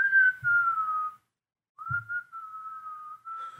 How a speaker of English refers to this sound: I want to play this whistler for you guys. There's a clip of him online. Yeah, here he is walking down the street.